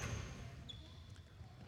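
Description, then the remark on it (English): Basketball game ambience during a missed shot and a follow-up attempt: low thuds of a ball bouncing on a court, with a brief high sneaker squeak or whistle-like tone partway through, under a soft crowd hum. “had a good-looking shot, didn't go in. And the follow-up is almost in.”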